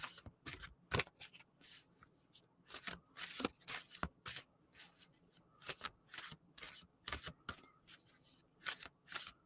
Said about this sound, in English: Connect with the sound of the shuffle if you're listening. And let this message flow to you.